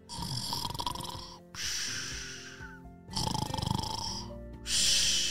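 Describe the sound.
A voice imitates the snoring of Fluffy the chicken, a chicken in a story: four loud, rasping snore sounds in a steady rhythm, each roughly a second and a half long, with short pauses between.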